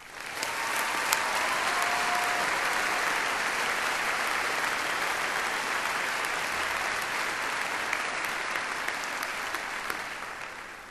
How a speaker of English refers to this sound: I'll ask them to please stand, and then we can applaud.